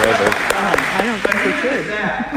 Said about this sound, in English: It's okay if you clap. Now if you want to do it and you really mean it, go ahead and clap.